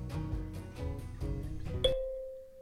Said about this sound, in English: That's a dinner bell.